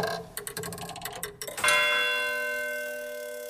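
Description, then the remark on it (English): Rapid mechanical clicking and whirring gives way to a single loud bell strike from a clock striking the hour, its bright metallic tone ringing on and slowly fading. “looking at the second hand as it approaches, you could see the palpable build-up of stress before the clock struck the hour.”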